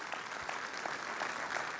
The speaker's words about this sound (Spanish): Denle un aplauso a Dios por ello.